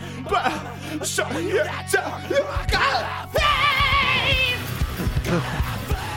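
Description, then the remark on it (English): Harsh, strained screaming vocals from a metal vocalist ring out loud over a dense, droning music track, intensifying into a sustained raw howl in the second half. “He's pretty good at screaming, but he's killing his throat.”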